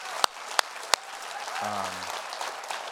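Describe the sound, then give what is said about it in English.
Three sharp, evenly spaced claps ring out, then a church audience breaks into steady, sustained applause for their pastor and his family, with a brief low hum or voice rising under the clapping midway. “So if you guys are grateful for your pastor, if you love your pastor and his family, would you clap one last time?”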